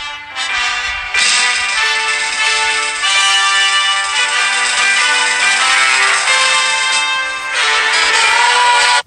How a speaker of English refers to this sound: Did they start the song with the French national anthem? The Marseillaise, yeah.